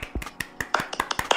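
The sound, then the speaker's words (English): Quick, uneven hand clapping as a round of applause for a guest: a dozen or so sharp, crisp claps in rapid succession, moderately loud, with no voices over them. “So I guess on three, I'm going to clap.”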